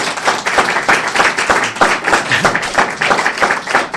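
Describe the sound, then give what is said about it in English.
An audience at the end of a talk event applauds steadily, many hands clapping together in a dense, continuous roar of claps that stays loud and even throughout, with no speech over it. “And yeah, I mean, you know, just because you've clapped, I haven't left the room, so, like, you know, obviously...”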